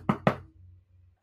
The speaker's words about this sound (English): And there's a sharp rap on the door.